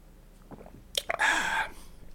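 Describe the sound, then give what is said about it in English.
A couple of soft clicks, then a breathy slurp of someone sipping Riesling wine from a glass, lasting about half a second before quiet returns. “But, okay, let me take a sip of this Riesling.”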